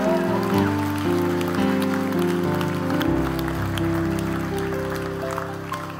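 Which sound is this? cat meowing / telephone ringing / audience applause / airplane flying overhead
audience applause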